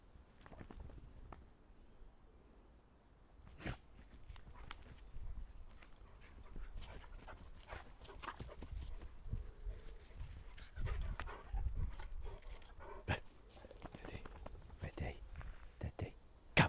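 A male dog named Usher pants steadily, its quick breaths mixed with rustling and scuffling movement and occasional sharp clicks, all fairly quiet with no talking.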